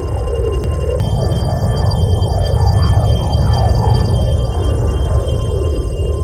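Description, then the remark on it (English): A flashback sound effect: about six seconds of wavering, warbling tones sliding up and down over a steady low hum, loud and continuous, with no voices. “I'm gonna cue the sound man to repeat the flashback effect, then, Mr.”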